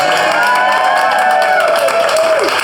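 A crowd applauds steadily, dense clapping filling the whole clip at a loud, even level, with voices cheering and whooping over it, one high whoop sliding downward near the end.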